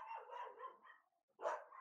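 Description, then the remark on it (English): A dog barks and yips in a quick flurry, pauses briefly, then lets out another sharp bark; moderately loud, with no talking. “Dogs are calm.”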